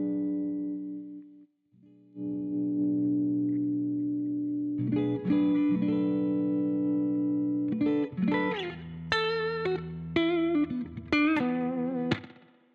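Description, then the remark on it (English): An electric guitar played through an octave effect pedal, not fuzz, with a thick octave-doubled tone: low sustained chords ring out first, then a busier run of higher bent notes and quick phrases, loud with no talking. “It's not fuzz, it's just the octave.”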